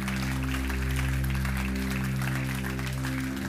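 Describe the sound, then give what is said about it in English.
An audience claps hands in a dense, steady wash of applause lasting several seconds, with a sustained low tone held underneath throughout. “If you accept this on your life, I wish you'd clap your hands and say amen.”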